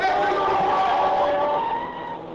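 A car speeds across the intersection of 13th and Pine against the light, its tires skidding in one long, loud screech that holds steady for a couple of seconds, its pitch wavering slightly before easing off at the end.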